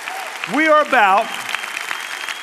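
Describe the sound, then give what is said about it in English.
Steady applause from a church crowd at Fellowship, including the balcony, for people baptized there, filling the whole stretch, with two loud rising cheers or whoops bursting out early on, then the clapping carries on at an even level. “Let's give them a crazy round of applause because that's what we're about.”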